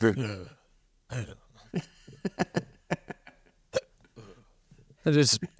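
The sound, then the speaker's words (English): A person acting drunk mimics drunken hiccups: a series of sharp, abrupt vocal gulps in an irregular rhythm, bracketed by slurred, mumbling voice sounds at the start and end. “Okay, because that sounded like a hiccup to me.”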